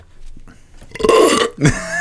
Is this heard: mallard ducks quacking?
no